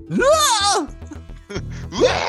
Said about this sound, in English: And you hear a blood-curdling scream in the distance. I can't do a scream. Who can do a scream? This sounds terrible. Just use the Wilhelm scream.